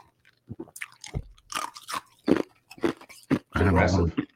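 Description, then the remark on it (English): Crunchy chewing right up against the microphone: a string of irregular, wet crackling bites and mashing sounds, ending in a longer, denser burst of loud munching. “I'm a chew in Dan's ear.”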